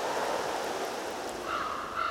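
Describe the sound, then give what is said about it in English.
A steady, hissing wash of ocean water as the tide rolls in, continuous and unbroken with a slight swell toward the end, heard alone with no voices. “And the shifting tide, reminding us of the celestial ballet.”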